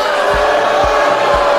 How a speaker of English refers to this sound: If you knew nothing else about the Green New Deal, you now know that everyone's talking about it and it was booed at a Trump rally.